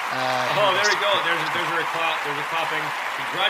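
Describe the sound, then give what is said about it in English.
A crowd clapping steadily throughout, a dense wash of applause mixed with loud voices calling out and talking over it. “at least we have the clapping, so the crowd clapping”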